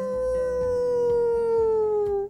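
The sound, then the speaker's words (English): A single long, steady animal howl from above ground, loud, holding one clear tone that slowly sinks in pitch over a couple of seconds, with no talking around it. “As the dirt and pebbles continued to fall on Nora's whole family, something was definitely above them, howling.”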